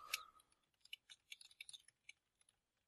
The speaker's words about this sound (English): I heard typewriter clacking, so I just thought Vanessa joined us.